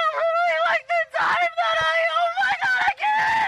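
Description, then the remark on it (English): A person mimics a man screaming into the air: loud, shrill, sustained wails delivered in several long bursts, broken by brief gasping pauses. “He's so he starts just screaming into the air.”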